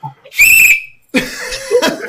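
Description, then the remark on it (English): A single loud, shrill whistle blast rings out for under half a second, followed after a brief pause by a burst of excited voices and laughter. “That's what this whistle for.”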